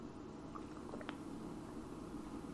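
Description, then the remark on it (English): A few soft, wet gulping sounds as someone takes a giant gulp of water into the microphone, brief and clustered near the middle, over a steady low background hum with no talking. “By the way, I just took a giant gulp of water into the microphone, so like when I go back and listen to this later, I'll despise that sound.”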